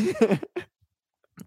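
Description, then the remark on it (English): A loud, harsh cough into a microphone bursts out, quickly followed by a shorter second cough, then after a pause a faint, brief third one. No one speaks. “You did not just scream cough into the microphone.”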